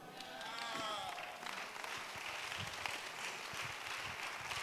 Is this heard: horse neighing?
no